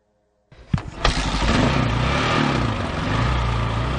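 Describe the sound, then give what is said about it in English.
After a moment of silence, a motorcycle engine bursts in with a couple of sharp knocks, then labors loudly and steadily as it climbs a steep, rutted, swampy logging road in the Sinforosa Canyon of the Sierra Madre. Its rough pitch wavers as it strains, over a constant hiss of rain. “The bike is fighting up the steep logging road in the Sinforosa Canyon of the Sierra Madre.”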